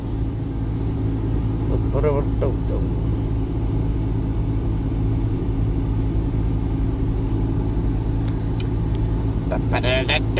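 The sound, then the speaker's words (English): A car drives slowly around a truck parking lot and the whole building, its engine a steady low rumble heard from inside the cabin, with faint voices briefly rising over it. “Well, I done drove around the truck parking lot. I don't give a shit, fuck it. We'll drive all the fuck way around.”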